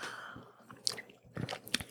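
Quiet mouth sounds of someone taking a sip of a special Harry Potter butter beer at Coastal Days Brewing, with a few soft wet slurps and clicks over about two seconds, no talking.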